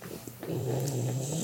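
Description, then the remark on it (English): A sleeping bulldog's heavy, snoring breathing, a low rumbling drone that swells and holds steady with a raspy, wheezy texture and faint higher snuffles, with no talking over it. “Although a lot of bulldogs have this breathing issue.”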